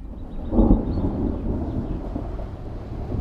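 A low rumble of thunder swells early and rolls on beneath steady rain, a broad, dense wash of noise that stays fairly loud throughout with no voices.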